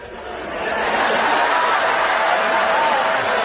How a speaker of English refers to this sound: Pastors, if any other pastor make some noise over here, please clap your hands, pastors.